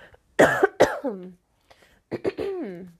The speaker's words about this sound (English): The fact that I had to cough there.